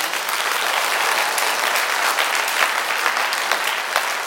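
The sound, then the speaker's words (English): An audience claps steadily, a dense, even wash of many hands with no pauses, sustained at a strong level throughout with no voices standing out. “If you want to clap and something moves you, God moves on you, something that's said, something that's sung, something that you want to testify with your heart, then clap, man, just to let it out.”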